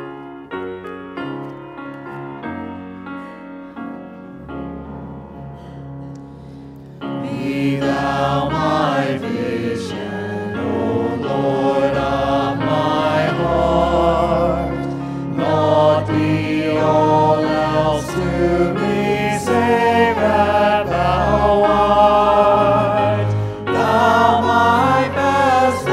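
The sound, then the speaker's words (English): An audience stands and sings verses 1 and 4 of the hymn Be Thou My Vision to conclude a church service: a sustained instrumental introduction of about seven seconds, then many voices join and sing together at a full, steady volume over the accompaniment. “Well, to conclude our service, we'll stand and sing verses 1 and 4 of Be Thou My Vision.”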